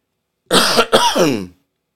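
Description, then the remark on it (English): A short cough followed by a rougher, drawn-out throat clearing, two loud, raspy bursts within about a second, with a brief gap between them and no talking. “Oh, I got to tickle the back of my throat.”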